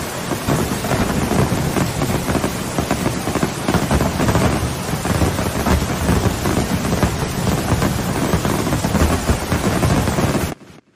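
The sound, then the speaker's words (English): Heavy rain pours steadily with rumbling thunder rolling underneath, a dense, loud wash of storm noise that continues for about ten seconds before cutting off abruptly. “that was a pretty intense storm.”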